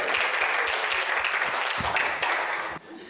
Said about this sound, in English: Let's give her applause, guys.